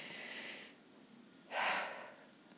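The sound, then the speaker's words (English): A slow, deep belly breath: a soft, airy inhale into the belly followed by a louder, fuller exhale, with no talking. “Breathe into your belly.”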